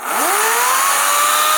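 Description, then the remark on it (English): An Ego-brand battery electric chainsaw, which uses batteries interchangeable with other Ego tools, spins up with a rising whine, then holds a steady, loud, high-pitched motor hum with no voices. “Electric chainsaw. Yeah. So this one is the one by Ego.”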